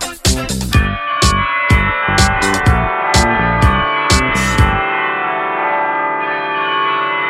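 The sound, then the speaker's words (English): Church bells peal loudly in a quick, uneven run of about a dozen strikes, then their rich ringing tones hang and slowly fade in a reverberant wash. No voices. “Bells are ringing.”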